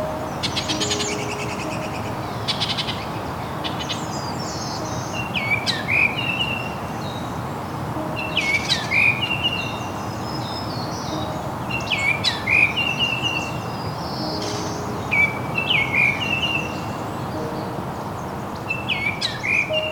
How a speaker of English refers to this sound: On this morning, I'm walking the Woodland Cemetery in Burlington, Ontario, along the shore of Hamilton Harbor. A mix of currently breeding birds, migrating birds, and year-long residents is filling this urban landscape with song.